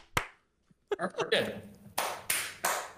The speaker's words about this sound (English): He reminds me of a seal. Why are you clapping?